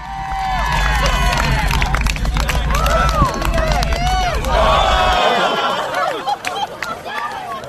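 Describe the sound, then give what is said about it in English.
A lively race crowd roars and cheers as a runner who has crossed the finish line spews out beer by a tree, with many overlapping shouts and whoops, a dense wall of voices rising and falling, with a low rumble underneath that drops away near the end. “Yeah, and the crowd's reaction was very appropriate.”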